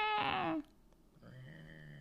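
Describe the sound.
A person imitates a cat's meow: one loud, drawn-out cry that slides down in pitch at the end, followed by a quieter steady tonal murmur.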